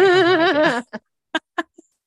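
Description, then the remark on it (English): A person gives a wavering, drawn-out imitation of a cow's moo lasting under a second, followed by a few short, sharp vocal bursts. “I like that you went with a cow noise.”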